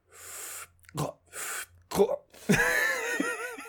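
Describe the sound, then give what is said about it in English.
Two long, breathy hissing exhales, then a sharp snort and a wavering, throaty, gurgling groan that rises and falls in pitch as cigar smoke is gargled in the throat. “No, I meant like talk to the people that are listening instead of just hearing me gargle down my fucking cigar.”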